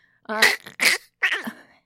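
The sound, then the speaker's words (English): A man whose voice is worn out from singing karaoke too loud coughs three times in quick succession, harsh breathy bursts with a voiced rasp, the last cough dragging out a little longer before trailing off into silence. “He coughs.”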